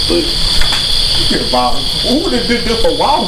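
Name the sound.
crickets chirping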